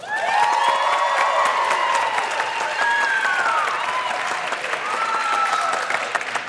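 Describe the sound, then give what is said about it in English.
A crowd breaks into loud, sustained applause to vote for team payments, dense clapping filling the whole stretch, with scattered cheers and rising whoops from several people mixed in. “So if you believe that it's for team payments, give me a round of applause.”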